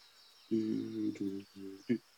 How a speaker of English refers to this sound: You hear a very strange buzzing from high above and behind you. People, I hear a weird, strange buzzing behind me and above me.